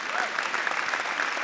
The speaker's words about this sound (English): Can you give him a round of applause for being really brave?